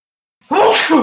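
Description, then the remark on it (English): A single loud sneeze bursts out after a moment of silence, with a sharp breathy onset and a brief trailing exhale. “Bless you. Thank you. I didn't have time to mute myself.”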